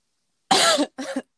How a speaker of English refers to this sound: I don't want to cough into the microphone.